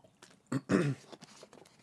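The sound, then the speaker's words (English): Someone takes a quick drink of water: a couple of louder gulping, swallowing sounds in the middle, surrounded by soft wet mouth clicks, with no talking. “Oh, I need some water.”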